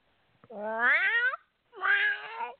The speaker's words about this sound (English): Cat. Yep. Oh, my. Meow, meow, meow, meow, meow, meow, meow. Oh, geez. Meow.